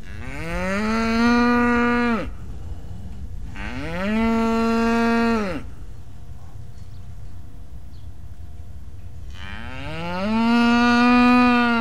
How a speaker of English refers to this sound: No, that was not a chocolate cow from Pennsylvania. That, my friends, is a real live dairy cow from California's Central Valley. Cows don't usually moo like this. happy cows are pretty quiet.